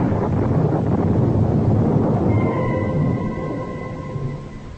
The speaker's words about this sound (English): But again the clouds are gathering, and the storm is at my heels.